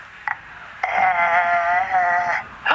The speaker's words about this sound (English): Well, what's that? That was a slow ghost.